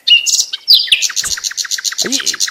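A small bird, a sparrow, chirps rapidly and continuously, with bright, high, repeated tweets in a quick rhythm, clear, with no talking.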